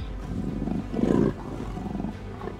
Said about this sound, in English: And you kind of jello through the claws, like the bars, and you take one harm. But when the big paw pulls back, you hear growl.